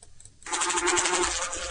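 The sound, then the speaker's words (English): After a brief quiet moment, a single bee's buzz starts up and holds steady, a loud, rough droning hum that continues to the end. “So one bee and then a bunch of bees.”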